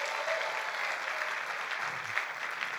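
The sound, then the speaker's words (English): Audience applause honoring the speaker's leaders, Steve and Lindy: many hands clapping together in a dense, steady wash of bright patter that holds at an even level throughout, with no distinct individual claps standing out. “Get them a hand clap, man.”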